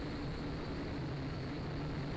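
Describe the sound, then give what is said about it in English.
A small toy drone's propellers whir in a steady, continuous buzz, fairly loud, as it flies forward fighting the wind outdoors, with a rough breathy hiss like wind across the rotors and no voices. “It's almost like a no-brainer if you really want to get involved with drones.”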